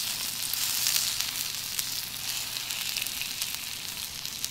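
Meat sizzles steadily on a flame-heated yogan plate cut from dried magma, cooking yakiniku in Japan, a continuous hiss scattered with sharp little pops and crackles, with no one talking over it.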